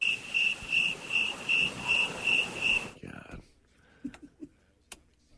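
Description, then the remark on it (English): A cricket sound effect played from a button chirps in a steady, rhythmic pattern, about seven bright pulses over three seconds, then cuts off abruptly, leaving near silence broken by a few faint clicks. “You're hitting crickets”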